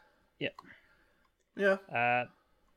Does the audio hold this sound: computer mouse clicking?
yes